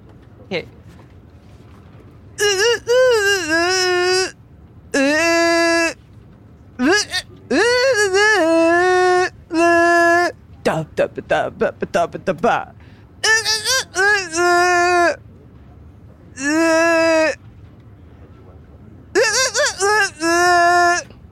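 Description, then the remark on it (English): A voice hums a melody composed for the Dino Country grassy plain level of a Super Mario game. It comes in short, choppy bursts separated by brief pauses, the pitch sliding up and down with a strained, almost pained quality and no other sounds underneath. “I'm gonna do my best to just kind of hum the song that I composed for this level.”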